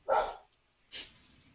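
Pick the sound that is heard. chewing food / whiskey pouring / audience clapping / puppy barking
puppy barking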